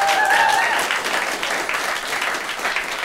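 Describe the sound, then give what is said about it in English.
A debate audience breaks into steady applause, voting by clapping for the view that Twitter and Facebook should severely limit online speech. A dense wash of many hands clapping at a fairly even loudness for several seconds, with a brief whistle-like tone near the start. “Those of you who think so, clap.”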